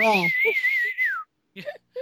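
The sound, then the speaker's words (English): The Star Wars droid R2-D2 lets out a warbling whistle that wavers for about a second, then slides downward, followed by a few short chirpy beeps. A brief low voice sounds at the start. “Like, listen to R2. He knows what's up.”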